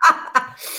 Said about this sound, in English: that's my dog Taco in the background